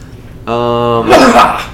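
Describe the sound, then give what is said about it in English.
A person sneezes toward a TV instead of away from the microphone: a single loud sneeze, a sustained pitched vocal 'ah' build-up, then a sharp, noisy burst of air that fades out quickly. “Sneeze away from the microphone.”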